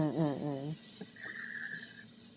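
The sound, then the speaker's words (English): Water runs from a kitchen tap with a steady hiss, while the pipes let out a wavering, warbling whistle that settles into a thin, high whine before fading. “The sink decided to sing when I was cutting.”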